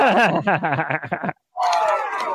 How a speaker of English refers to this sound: That's the crowd in the background, man.